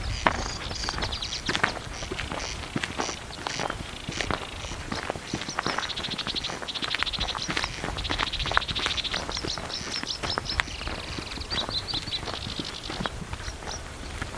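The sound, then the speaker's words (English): A male corncrake on the island of Tiree, Scotland, calls over and over, a dry rasping crex-crex repeated in a steady, clattering rhythm for the whole stretch, fairly loud with no voices over it. “A quest to hear the mysterious corncrake on the island of Tiree”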